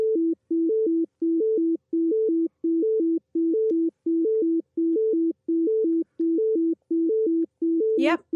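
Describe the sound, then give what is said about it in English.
A looped three-note tone pattern of the notes A, B, A, high-low-high, with a short gap after each triplet, repeating steadily at a brisk pace. Pure, moderately loud beeps with no voices, ending in a brief rising chirp. “Here's the simple sequence that you might first hear. Yep, just three little notes, A, B, A.”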